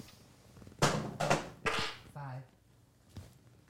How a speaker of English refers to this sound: And it is a bonus round. You guys just roll your dice.